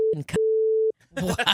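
A steady, mid-pitched censor beep bleeps out speech: a short burst, a clipped word, then a longer half-second tone, followed by a pause and people talking.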